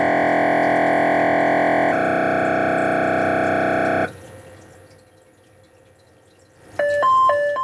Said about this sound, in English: I just matched the bells. Woo!